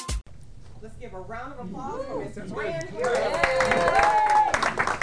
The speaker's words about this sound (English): A round of applause for Mr. Fran Harris.